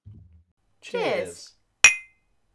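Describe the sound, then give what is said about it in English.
A voice speaks briefly, then two cups knock together once in a toast, giving a single bright clink that rings for a moment before fading. “Cheers.”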